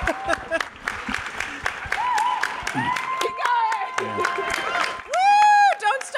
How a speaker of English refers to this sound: Oh, a nice straight hand at the back. That's give her a round of applause. Enthusiastic hand.